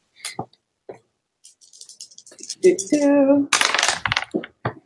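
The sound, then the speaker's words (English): Dice thrown onto a hard floor clatter and bounce, a few scattered clicks building into a brief ringing rattle before settling with a couple of final taps, fairly loud. “threw dice. Well, it's either a 1 or a 7, which means I have to re-roll it because it's on the floor”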